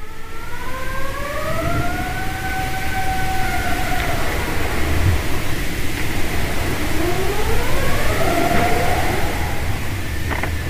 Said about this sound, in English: that is the sound of, yeah, sea ice rubbing, two plates of sea ice rubbing against one another and making the singing